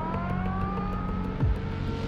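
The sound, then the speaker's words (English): A police car speeds past on a street, its engine a steady, loud drone whose pitch sags slightly as it goes by, with a brief low thump near the end and no voices. “A police car speeds down the street.”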